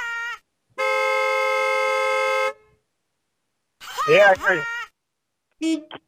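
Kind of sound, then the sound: vehicle, car horn honking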